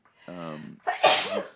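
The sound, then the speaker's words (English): A single fairly loud sneeze: a short voiced intake of breath followed by a sharp, breathy burst, heard alone without talk. “bless you. Thank you.”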